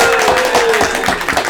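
A brief, steady burst of applause thanking someone for making cover art: many hands clapping in a dense, crackling wash that stays loud throughout, with a faint sustained tone running underneath.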